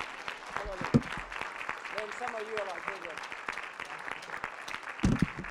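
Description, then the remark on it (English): A church audience claps steadily in dense, continuous applause as a morning praise offering to the Lord, with scattered voices calling out and cheering underneath and a couple of louder shouts rising above the clapping. “No, some of you are not even clapping.”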